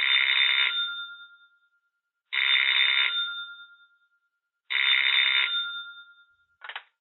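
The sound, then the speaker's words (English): A telephone rings three times in a steady pattern, each ring a bright electronic trill that fades out, followed by a brief click as if picked up. No voices are heard. “I hang the picture on the wall again, covering up the words, and go to the phone.”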